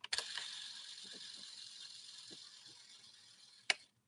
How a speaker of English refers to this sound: If you're watching the video right now, you can see the lens swinging around. I'm going to actually hold this up to the mic so you can hear this. It sounds like a toy. I'll cock the shutter one more time and listen to this. It's pretty wild.